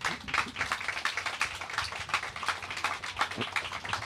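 An audience applauds steadily for about four seconds, a dense, even wash of many hands clapping at once, with no voices rising above it.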